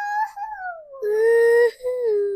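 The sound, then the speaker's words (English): A voice imitates a monkey's howl: a drawn-out, wavering howl that slides downward, then two more sustained howls, the middle one loudest, all clear with no other sound. “They taught me how to howl. Can I hear your howl?”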